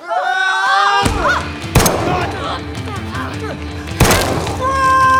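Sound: gunshot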